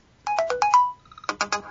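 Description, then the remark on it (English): A smartphone text alert tone plays alone and clearly: a quick run of bright electronic chime notes, a brief held note, then three more rapid pulses. “say you pick one for, like, text tone, and at the very bottom of the list is classic”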